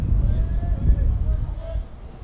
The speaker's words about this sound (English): Probably heard that gust of wind in our crowd mic.